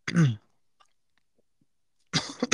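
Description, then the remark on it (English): A harsh cough, then about two seconds of silence, followed by a quick cluster of rougher coughs. No talking. “you're just over here coughing.”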